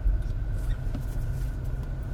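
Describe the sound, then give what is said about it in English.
Steady low rumble of a car moving through traffic, a continuous engine and road drone filling the background with no voices. “Let's see when this traffic stops.”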